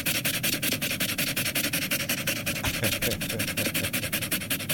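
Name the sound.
dog panting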